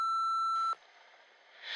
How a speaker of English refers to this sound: I can't come to the phone right now, so leave your name and number after the beep.